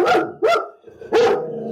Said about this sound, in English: No, Finley. As the Baroness has trained Finley to bark when working class people appear, isn't she?